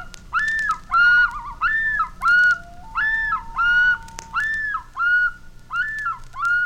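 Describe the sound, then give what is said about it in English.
A man out on a lake in Algonquin Park, Ontario, plays a harmonica, a string of about nine short, wailing bent notes in a steady rhythm, mimicking a seagull's cry, with a slight echo and no voices. “He's trying to talk to him with a harmonica.”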